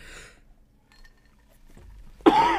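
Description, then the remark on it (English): A sudden, loud cough bursts out near the end, following a brief breathy rustle and a stretch of near silence. No one speaks. “My cough was gone.”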